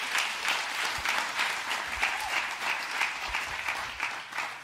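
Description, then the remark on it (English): A church audience claps steadily as the pastor comes up after a prayer, a dense wash of many hands applauding together for several seconds, sustained, with no one speaking over it. “Let's give a hand clap as Pastor Omar comes up.”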